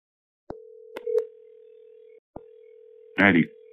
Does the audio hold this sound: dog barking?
no